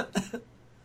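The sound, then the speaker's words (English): A short cough in two quick bursts, the first stronger, then quiet, from a person who was trying to laugh. Fairly soft, with no talking. “I was trying to laugh, but then I coughed.”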